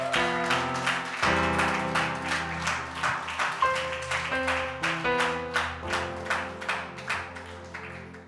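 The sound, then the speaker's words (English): An audience claps for the Lord in a steady, quick rhythm, sharp hand claps repeating about twice a second over sustained, shifting keyboard chords, with no voices. “Come on, give the Lord the best clap of Him.”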